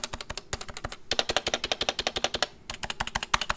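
Rapid, loud typing on a dirty, stock tenkeyless mechanical keyboard without silencing rings, a steady stream of sharp clacky keystrokes with a brief pause midway, no voices.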